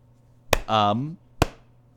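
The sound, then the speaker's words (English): Two sharp, loud claps spaced nearly a second apart in a slow rhythm, with a brief voiced sound rising in pitch between them. “Oh, that was just me doing a slow clap.”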